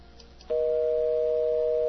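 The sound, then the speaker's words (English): A steady electronic telephone line tone kicks in after a brief quiet moment and holds loud and unbroken, a flat two-pitch hum rather than a ringing pattern, with no voices; a phone call that is not ringing through at the other end. “It's not ringing at his place, so I'm going to try the other number he just sent me.”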